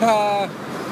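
A loud car engine drones with a steady, tonal whine that cuts off after a moment, leaving a rough rumble of street traffic as loud, slow cars pass on a boulevard.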